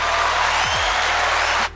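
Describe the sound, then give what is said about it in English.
A burst of steady, dense applause from a small group, a loud continuous patter of clapping that holds for under two seconds and then cuts off abruptly. “Round of applause for my son B.O.”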